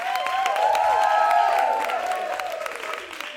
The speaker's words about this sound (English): I'm going to add an applause sound effect for you right now.